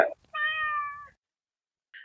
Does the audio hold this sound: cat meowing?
yes